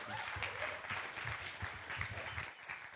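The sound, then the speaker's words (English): A church audience at a morning service applauds steadily, many hands clapping in a dense, continuous patter that stays loud throughout before easing slightly at the very end. No one speaks over it. “And I know you guys are clapping a lot, but can we give it up for the worship team one time?”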